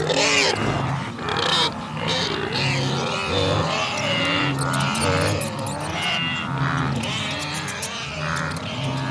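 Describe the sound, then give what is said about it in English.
A loud, continuous jumble of pigs, mice and wildebeest: low grunting and bellowing calls overlap with bursts of high, sharp squeaks, with no voices and no pauses throughout. “And as an independent equal opportunities podcaster, here are some pigs and mice and wildebeest.”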